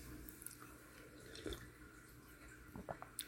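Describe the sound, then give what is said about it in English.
Quiet sipping of tea: a few soft, wet slurps and small liquid clicks, one around the middle and a quick cluster near the end, over a faint hiss of background noise with no talking. “I'm gonna take some sip of tea again.”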